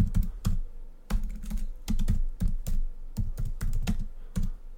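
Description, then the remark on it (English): Rapid keyboard typing of a Google search for the Kevin Costner show, in irregular bursts of sharp clicks and clacks, with brief pauses between flurries of keystrokes and no voices. “I just Googled Kevin Costner show.”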